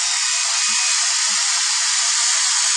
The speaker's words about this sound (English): And you can hear the steam escaping. And that steam is quite hot. And that noise is moisture coming out along with the steam.